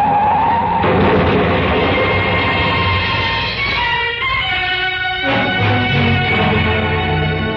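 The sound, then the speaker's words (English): Tires and brakes screech loudly and continuously as a car skids through a wild curve, shrill squealing tones wavering over a roaring engine rumble, intense for several seconds without any talking. “In my ears was the screeching of brakes, of tires taking a wild curve.”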